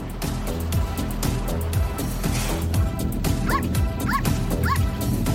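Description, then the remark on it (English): Dogs bark and give high, whiny yips at a local biker hangout where riders gather before a ride, with a run of three sharp yelps near the end, all over a dense, steady background din that never lets up. “Their typical day starts here at the local biker hangout, where people catch up and enjoy the dogs before heading out for a ride.”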